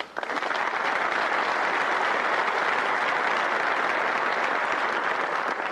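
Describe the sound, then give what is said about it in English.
A crowd applauds steadily for several seconds, a dense, even wash of many hands clapping at constant loudness, with no voices standing out. “Before you clap, let me point out that the reason why we have too much printing spending and too much printing of money is because you people want it.”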